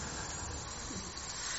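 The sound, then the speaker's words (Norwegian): Air hisses steadily out of a bicycle inner tube on a bicycle wheel, just punctured with a screw, a continuous soft rushing sound that holds an even, fairly quiet level for under two seconds, with no voices. “Dette jo nå upunktert, så jeg skal nå punktere det. Da tar du en skrue, for eksempel.”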